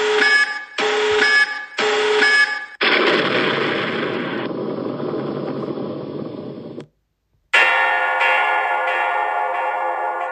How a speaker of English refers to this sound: That was not a bell, in my opinion. I mean, that was a bell, but that for me sounds more like a gong.